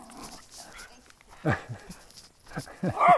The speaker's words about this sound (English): Oh, there's a dog. Oh, a yellow-vested dog.